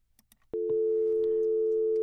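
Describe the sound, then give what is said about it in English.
After a soft click, a loud, steady electronic telephone ringing tone sounds from a VoIP call placed from phone 1001 to 1000 and monitored in Wireshark, a continuous two-pitch hum that holds without a break to the end, with no talking. “But when I make a call from one phone to the other, so let's make a call from 1001.”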